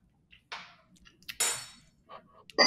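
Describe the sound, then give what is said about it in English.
Glasses clink together in a toast, a few bright, ringing taps and a louder chime, followed by a burst of shattering-like rattle before a final sharp clink. “Cheers. Cheers.”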